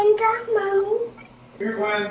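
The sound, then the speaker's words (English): A toddler boy babbles in high-pitched, wordless bursts: two drawn-out vocal sounds separated by a short pause, clear. “Sorry, I got a toddler. I don't know what you're saying. I don't speak you.”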